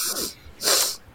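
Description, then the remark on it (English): A loud nasal sniff: a short breathy intake followed by a longer, stronger airy rush through the nose, with no talking. “I give it a big sniff.”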